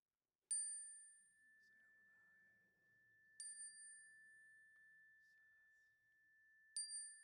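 A bright metal chime is struck three times at slow, even intervals in a sanctuary as people speak names aloud, each strike ringing with a sustained, shimmering tone that lingers between hits. Faint murmuring voices sit underneath.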